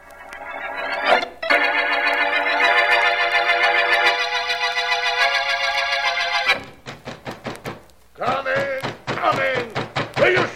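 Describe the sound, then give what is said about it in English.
A rapid series of sharp, loud knocks on a door at night rings out after a long sustained musical tone ends, then a voice starts talking. “On that door at this hour of the night?”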